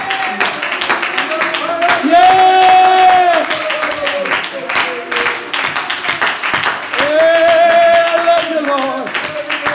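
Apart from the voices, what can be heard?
audience clapping hands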